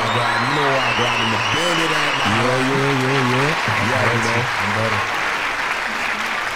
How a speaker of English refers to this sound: It's the best. All these people clapping. We love it.